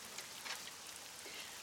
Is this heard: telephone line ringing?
no